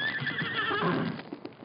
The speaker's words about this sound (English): Silver. He called the horse Silver. Look, he's coming.